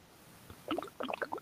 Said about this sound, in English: Who's smoking a bong? Oh, that was my water. Oh, sorry. Here, I'll do it again.